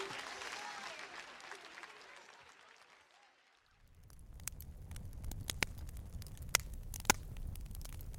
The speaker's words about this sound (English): You hear that? The sound of a crackling fire. But this isn't just any old campfire. This is a smokeless solo stove fire pit.